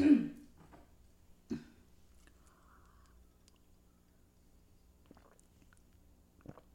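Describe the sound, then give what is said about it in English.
A quiet sip of tea: a short slurp at the start, another soft gulp a moment later, then faint mouth sounds and a swallow in near silence, with no talking. “So whatever is coming up now, excuse me, I'm going to take a sip of tea.”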